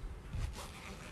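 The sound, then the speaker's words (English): A large pencil case shaped like a little backpack is zipped open in one quick, raspy stroke, fairly quiet, with no talking over it. “Okay, so my pencil case is like a little backpack. It doesn't have the things, and it's really big. So I'm gonna open it.”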